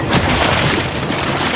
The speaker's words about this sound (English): A large, fast engine thundered past and splashed through a big, muddy puddle.